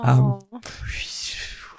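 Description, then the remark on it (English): A brief voiced sound, then a person breathily hisses a steady, whooshing rustle for over a second, mimicking leaves rustling in the wind as the spoken name of a Feywild creature. “And then it just makes a noise that sounds like leaves rustling in the wind.”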